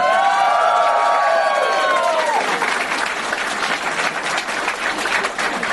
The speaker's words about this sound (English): Way too much clapping